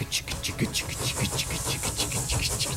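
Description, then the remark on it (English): A train coming in: a steady low mechanical rumble overlaid with rapid, rhythmic bursts of hissing clatter, repeating several times a second at an even, fairly loud level. “It's a train coming in.”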